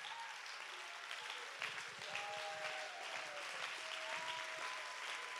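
A church audience stands and claps steadily to give God praise, a dense, continuous wash of applause with faint voices and a few raised tones rising through it, fairly loud throughout.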